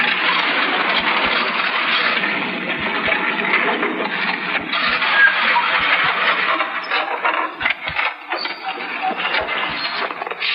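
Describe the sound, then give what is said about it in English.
A car engine runs roughly and sputters from carburetor trouble, with a steady mechanical roar broken by irregular low knocks and misfires, fairly loud, with no voices. “Even where our driver was going to develop engine trouble.”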